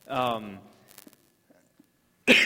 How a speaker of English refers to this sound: sorry. I'm be coughing in this all morning. So if you're listening online, my apologies for the entire morning.